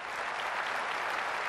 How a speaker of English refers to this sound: It's no surprise that an NRA crowd cheered. After all, they had helped to craft the law.